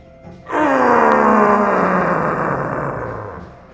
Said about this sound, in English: Before you have a chance to respond, you hear Gungar yell from the top of the vault.